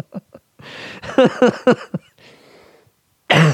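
A short fit of three harsh coughs in quick succession, fairly loud, followed by a raspy breath and a brief pause before another burst of sound.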